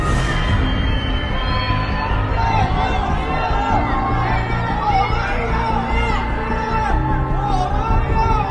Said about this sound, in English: There are even shocking videos of screams ringing out around the city from those trapped indoors.